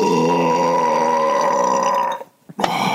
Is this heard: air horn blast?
no